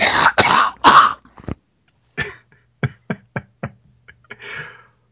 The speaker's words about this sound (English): Hold on, I have to cough, but I don't want them to hear it.